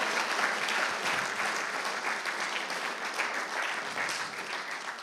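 Sustained applause from an audience for a woman about to speak, a dense steady wash of many hands clapping at fairly even loudness for the full five seconds, with no speech over it.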